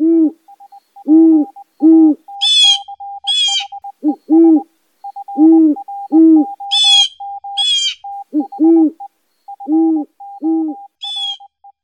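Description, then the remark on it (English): Common loon (Great Northern Diver) calls ring out with no talking: repeated low, mellow hoots over a steady, rapidly pulsing tremolo, broken now and then by brief bursts of higher, sharper chirping. “Loons are amazing birds. They're divers.”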